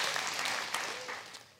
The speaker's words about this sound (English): No, if we're all going to clap, let's all clap if that's a good point. You get it?